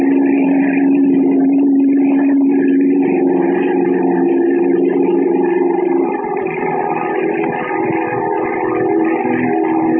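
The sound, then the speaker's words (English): A plane's engine roars steadily as it takes off from a river with two rope ladders attached to its wings, heading for the Temple of Ashtar, a loud, continuous droning hum that shifts slightly in tone partway through, with no voices over it. “Then the plane roars up from the river, the two ladders dangling below it, and heads for the Temple of Ashtar.”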